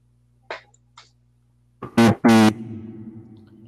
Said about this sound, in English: I forgot my shift plus P makes funny mic and shift plus Y makes his echo. I didn't mean to do that.